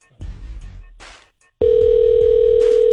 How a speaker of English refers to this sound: Push that last button. Yeah. Push the last phone number is 7. Push 7. Okay. Ooh, it's ringing.